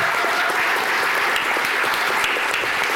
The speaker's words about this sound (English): Round of applause as we go into the next round.